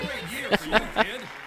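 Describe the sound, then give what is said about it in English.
Three soft, evenly spaced hand claps in a slow, polite golf-clap rhythm from several people, fairly quiet, with a low voice murmuring and faintly chuckling underneath. “It truly is a golf clap.”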